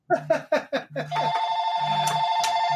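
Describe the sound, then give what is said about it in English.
A phone rings loud with an incoming call: five quick, bright electronic chimes, then a steady buzzing, warbling ringtone that drones on without pause. “when I try to kill that phone, it just continues on like it's screaming its slow death”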